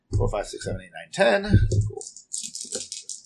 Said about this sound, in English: 4, 5, 6, 7, 8, 9, 10. Cool. Oh, yeah. A 6. You rolled 10 dice with your sword cane?